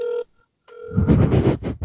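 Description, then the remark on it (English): Ringback tone of an outgoing phone call to someone's mother: a steady electronic ring, a short pause, then the ring resumes before loud, muffled crackling noise swamps it, as if the line connects. “Everybody that's wondering, we're calling Joe's mom right now.”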